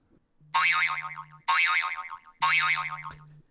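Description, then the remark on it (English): A game timer goes off when 5 seconds are up with three loud, wobbling boing sounds in a row, each a springy warbling tone that sweeps up and down and fades slightly before the next. “We'll show them what it's going to sound like when the 5 seconds is up.”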